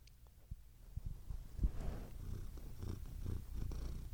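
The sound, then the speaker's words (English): A cat purring, a steady low rumbling rhythm with soft pulses throughout, fairly quiet and continuous with no one talking. “Little cat ASMR.”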